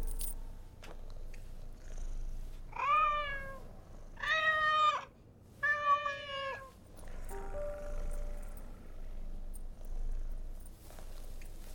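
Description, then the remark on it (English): A cat meows three times in quick succession, loud, each call drawn out and tonal, followed by a fainter mew, over a low continuous purring rumble. “Send in the cat.”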